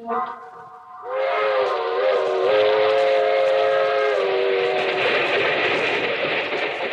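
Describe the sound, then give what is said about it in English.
A train whistle sounds loud and sustained for several seconds, steady harmonic tones over the rumble of the Southeast Limited, a long passenger train, rolling along the humming rails, with no talking. “That train is the Southeast Limited.”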